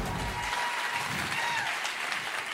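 A church audience applauds steadily to welcome a student pastor at a morning service, a dense wash of many hands clapping at once, fairly loud and sustained throughout with no voices standing out.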